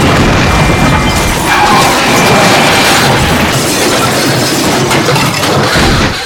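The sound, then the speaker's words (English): A loud car crash on 79th Street: a black Range Rover runs a red light at high speed and smashes into the driver's side of a car, a heavy metallic smash followed by several seconds of continuous crunching, grinding and rumbling debris noise, with no voices. “As the tourists crossed 79th Street, a black Range Rover barreled across the red light at high speed, smashing into the driver's side of the car.”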